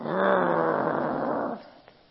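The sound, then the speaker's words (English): A person's voice imitates the low, rumbling growl of a Rottweiler lying on a porch, heard after a hard knock on the door: one sustained guttural snarl lasting about a second and a half before cutting off, with a faint click afterward. “There's a Rottweiler laying between two chairs on the porch.”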